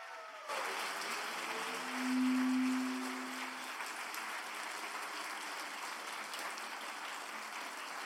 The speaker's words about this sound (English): And he happens to be here today at Watermark Tampa. Please welcome, great round of applause for Jamar Tisby.